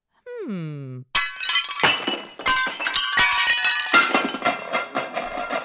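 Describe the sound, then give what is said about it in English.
A short vocal cry with a falling pitch, then a loud crash of a dish shattering, followed by several seconds of ringing clinks and pieces clattering and scattering. “Well, one less dish to clean.”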